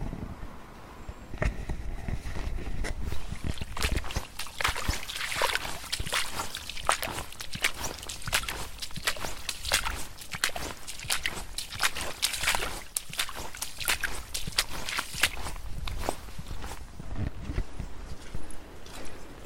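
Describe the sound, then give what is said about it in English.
Steady footsteps squelch and suck through wet mud as someone walks along the far end of a field in winter, each step a soft slap with a watery squish, continuing at an even walking rhythm with no voices. “I'm walking along the far end of the field before I head back down across the mud and then through the little bit of woodland that's there before I reach the field where all the skylarks are.”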